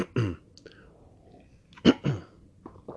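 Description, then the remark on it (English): Rough throat clearing after taking a drink, in a few short bursts: one near the start, then a quick double hem a moment later, with small faint mouth or swallowing sounds between and no talking. “First of all, let me take a drink of something to clear my throat because I clearly sound like shit.”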